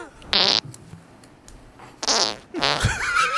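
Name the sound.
weak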